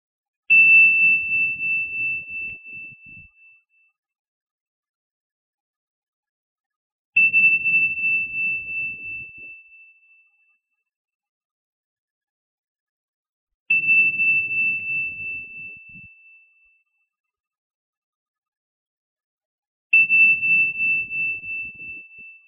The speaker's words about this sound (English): At this point, I'm going to go ahead and take my brief 30 seconds or so rest of my voice, while maybe, from what I was told, you might hear some Tibetan bells. Maybe you won't. I don't know. But I'll be back, give or take, in about 30 seconds.